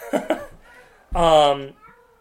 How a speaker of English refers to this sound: I apologize, everybody. I have a cat in heat.